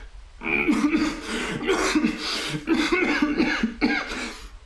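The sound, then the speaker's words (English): A person acts out a woman's fit of coughing: a run of several harsh, throaty coughs in quick succession, fairly loud, with no words spoken. “And she looks confused and she coughs.”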